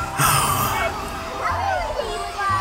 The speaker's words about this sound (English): The witches continue to the Disney store in stride. Winifred puts out her hands to stop the others as they are aghast at the sea of children running in between the aisles.